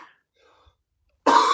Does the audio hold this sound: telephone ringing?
no